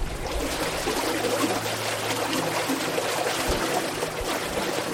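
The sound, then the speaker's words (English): Steady flowing irrigation water in California's Imperial Irrigation District, with a busy trickling, burbling texture, continuous throughout, with no voices present. “The sound of the water is very relaxing.”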